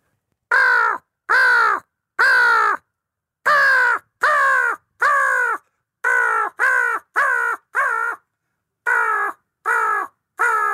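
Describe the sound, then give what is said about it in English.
A person imitates a crow, giving a loud series of about a dozen harsh caws in uneven bursts with short gaps between them, with no talking over the calls. “Well, I want to hear your owl and your crow.”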